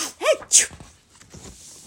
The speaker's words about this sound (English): But when he turned the shower knob, this water's freezing! He jumped out of the bathtub, now sniffling and sneezing.